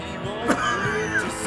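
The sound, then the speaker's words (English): A short cough bursts out over the steady instrumental 7-second delay theme song on a WFMU radio broadcast, followed by a second, softer cough-like burst a moment later as the music continues underneath. “Listen for the cough.”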